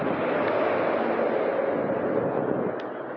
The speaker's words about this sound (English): It's quite the rain.